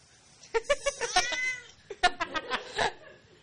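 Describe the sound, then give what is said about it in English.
A cat named Goose meows in two quick bursts of short, chirping, high-pitched calls, each run of several rapid meows separated by a brief pause, clear and fairly loud with no talking. “this is one of the few books that wouldn't be improved by a cat”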